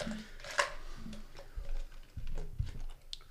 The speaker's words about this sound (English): Hey, you can hear ice chewing.